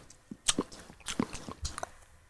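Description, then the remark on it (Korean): Crisp crunching sound effect of something being bitten and chewed, introducing a gaming news segment, a quick irregular run of about eight crackly bites over two seconds, with no talking. “아그작 아그작 아그작 아그작 아그작.”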